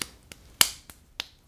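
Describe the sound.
Butt cheeks clapping during twerking: about six sharp, fleshy slaps in a steady quick rhythm, fairly loud, with no talking.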